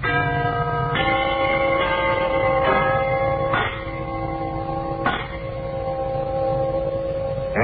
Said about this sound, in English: we want you to listen to a set of these genuine brass door chimes